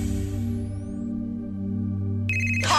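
A phone ringtone plays for an incoming call, with steady sustained tones and a bright electronic chime that bursts in near the end, loud and with no talking over it.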